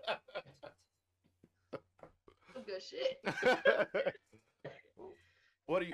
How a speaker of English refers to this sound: That smoker's cough is getting her.